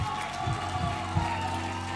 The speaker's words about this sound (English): Come on, give them the best clap and praise and worship you got. Come on.